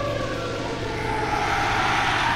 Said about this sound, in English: Is that an alarm? This is bad. This is really bad.